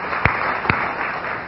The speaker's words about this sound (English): Now let's pause and let's just give that statement a hand clap right now.